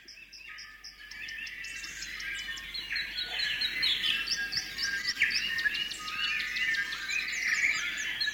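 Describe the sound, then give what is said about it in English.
A recording of a dense dawn chorus of many New Zealand native birds singing and chirping at once, with overlapping whistles and trills filling the air continuously, one bird sounding closer in the foreground, with no talking. “So one that I would like to play is called the Dawn Chorus.”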